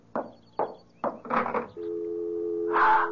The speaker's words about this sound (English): It's the dial tone. Hold on to the phone.